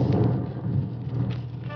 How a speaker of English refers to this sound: It's beginning to rain.